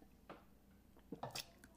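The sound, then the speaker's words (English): Quiet mouth sounds of someone drinking water: a few short wet gulps and swallows with small squishy clicks, spaced unevenly, with no talking. “I had to drink some water. Mouth got dry.”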